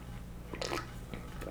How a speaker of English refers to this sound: Shall we drink a glass of water real quick? Hold on.